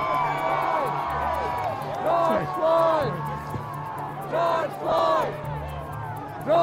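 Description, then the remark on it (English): A large crowd gathered outside the courthouse in Minneapolis cheers and shouts outdoors as verdicts are announced, a dense continuous roar of many voices with repeated surges of louder whoops and yells rising above the din. “The verdicts were greeted with cheers outside the courthouse in Minneapolis, where large crowds had gathered.”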